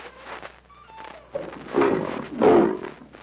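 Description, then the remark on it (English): A lion roars twice in deep, rumbling bursts, the second louder and fuller, with faint background noise and a few soft tonal sounds before the roars begin. “By the god, Tarzan, a lion.”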